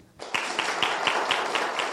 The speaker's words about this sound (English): When I raise my right hand, everybody clap. Ready?